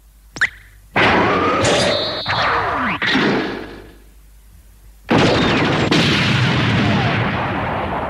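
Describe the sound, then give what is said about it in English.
A sharp crack, then heavy booming blasts with squealing, grinding metallic tones, a brief pause, and a second long roaring burst of explosive noise that rumbles on to the end, as Jackhammer's turret cap pops up and blasts bank doors. “And Dagger, you know, basically pops up Jackhammer's turret cap and blast the doors.”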